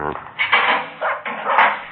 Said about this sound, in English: Wonder why he didn't bark when we knocked on the door.